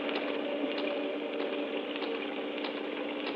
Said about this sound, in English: This rain seems to be getting worse.